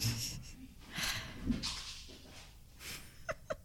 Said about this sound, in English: the dog is tearing through the house because Chris just got home